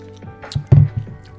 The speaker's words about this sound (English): I need to lather up first. Here we go.